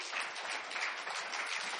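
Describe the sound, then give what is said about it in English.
An audience applauds a person being called up onto the stage, a steady, dense wash of many hands clapping at once, holding an even, fairly loud level throughout with no voices standing out. “Come, give him a hand up, people.”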